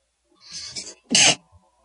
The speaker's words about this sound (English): Woof. Just sneezed. Excuse me. Sneeze for your health.